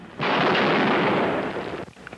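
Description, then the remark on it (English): A loud rifle gunshot on an old, rough recording from 1966 in Austin, Texas, fired by Charles Whitman from the clock tower balcony on the University of Texas campus; its harsh blast of noise smears out for over a second before cutting off, with no voices. “It was recorded in Austin, Texas in 1966 after a lone shooter named Charles Whitman stormed the balcony of the clock tower in the middle of the University of Texas campus and started firing at random.”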